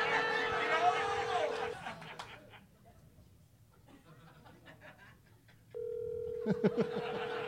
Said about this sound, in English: Oh, my phone is ringing. This is a good one.